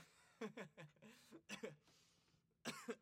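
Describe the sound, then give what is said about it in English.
A loud fit of coughing in three quick bursts, each with two or three harsh hacks, separated by brief rasping breaths, with no talking. “That's what I get for making a joke like that. I start coughing.”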